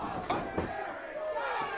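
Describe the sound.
A large crowd chanting and roaring at a wrestling event, split roughly evenly with rival chants seeming to compete, a steady dense wall of voices broken by a couple of sharp thuds.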